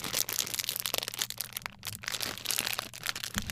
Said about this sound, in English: Okay, I'm struggling to open a plastic bag. Come on. Okay, this is not working out the way I wanted.